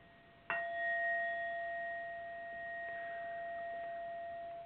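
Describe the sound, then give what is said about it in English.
A single meditation bell is struck once to begin a meditation, ringing with a bright metallic attack and a steady, sustained tone that slowly fades over several seconds, heard alone with no talking. “So I'm going to chime a bell here to begin.”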